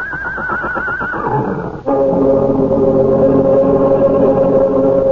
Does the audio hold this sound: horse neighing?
yes